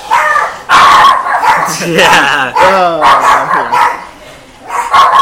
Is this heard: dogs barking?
yes